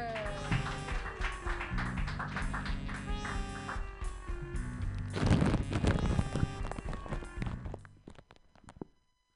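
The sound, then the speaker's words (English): A crowd at a comedy show applauds over upbeat walk-on music as the next comedian, a woman, is introduced, the clapping swelling to a dense burst midway before fading out with the music at the end. “Clap your hands together for Sierra Hager.”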